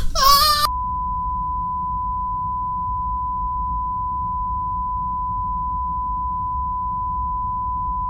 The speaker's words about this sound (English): I'm just going to beep that out so it makes it sound like you just swore at me big time.